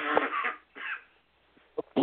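A man coughs in several harsh bursts: two rough coughs close together, a brief pause, then a couple of sharper hacking coughs, heard up close with no speech.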